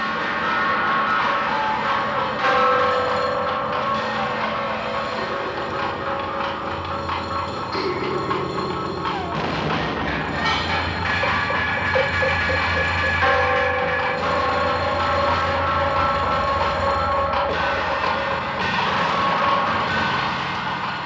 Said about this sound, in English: That is the Texas Chainsaw Massacre, some of the theme music that courses through the entire film.